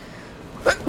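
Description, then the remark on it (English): A single sneeze near the end: a quick catch of breath, then a sharp, loud, breathy burst after a quiet stretch, with no talking. “Bless you.”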